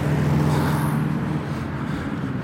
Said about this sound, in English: I mean, dude, get a new truck. Holy fuck. Just don't drive if it's that loud.